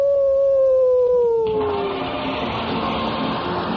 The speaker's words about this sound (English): Oh, there's someone at the door. Why, it's a stray dog.